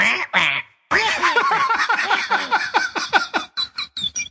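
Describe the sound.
A person imitates a parrot, giving two short squawks, a brief pause, then a rapid, loud run of harsh, quacking squawks that get choppier toward the end.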